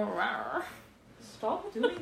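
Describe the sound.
A person imitates a wolf growl, making two rough, throaty vocal bursts with a brief quiet gap between them.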